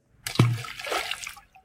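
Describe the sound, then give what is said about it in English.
A tree is thrown into a pool of water with a sharp splash, followed by a second of churning, sloshing water that settles quickly. No voices. “Take this tree and throw it into the water.”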